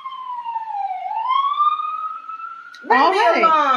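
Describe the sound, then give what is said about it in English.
An emergency vehicle siren in Brooklyn wails in a long, slowly rising tone, then jumps into a louder, busier stretch of rapid overlapping yelps as it passes by. “We live in Brooklyn and there's sirens and door slamming because our neighbors are trash.”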